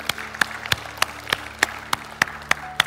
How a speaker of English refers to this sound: Come on, let's give God a round of applause, can't we?